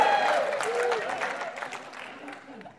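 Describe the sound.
An audience breaks into sustained applause, dense clapping filling the room, with a few voices calling out near the start before the clapping slowly tapers off.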